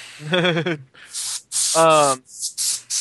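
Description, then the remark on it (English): An air blower cleaning a keyboard lets out several short, loud hissing blasts in quick succession, broken up by two brief wavering, voice-like tonal sounds. “Anyway, I was using the air blower on the keyboard.”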